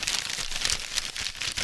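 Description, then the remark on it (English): Paper being deliberately rumpled and crinkled, a steady run of dry crackling bursts with bright hiss, continuous for a couple of seconds with no voices. “Mandatory fake noise about me rumpling paper.”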